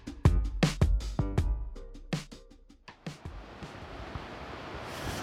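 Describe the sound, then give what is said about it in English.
Open-water noise around a boat at sea with ocean all around: a few sharp, choppy splashes and bumps early on, then a steady rushing wash of waves and wind filling the rest. “Got ocean all around us.”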